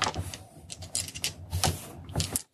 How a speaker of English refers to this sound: All right, so now you roll 3 dice.